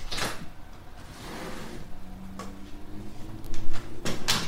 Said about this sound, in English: I want to open up a window in here.